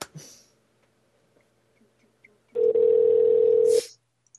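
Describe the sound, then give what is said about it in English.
A steady telephone dial tone sounds loudly for about a second after a brief click and near-silence as a phone call is placed, then cuts off with a short burst of noise; no one speaks. “All right, shall I call him now on the bat phone?”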